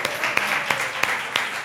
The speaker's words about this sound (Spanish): Eso, un aplauso para ellos, por favor.